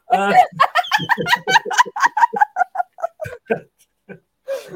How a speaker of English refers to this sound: Excuse the seagulls going past.